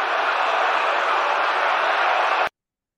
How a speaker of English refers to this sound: Swing and a drive toward right center. Back goes Robert. Back near the stands. That ball is gone. A game-winning home run for Chris Morel. Can you believe it? Listen to this crowd.